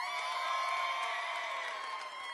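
A crowd cheers and whoops continuously for a rap battle contestant, a loud, steady roar of many voices with bright high shouts layered on top, holding at full volume throughout.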